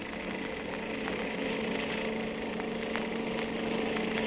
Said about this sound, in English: I'll have to step on it. Here we go. Ah, this motorcycle can certainly travel.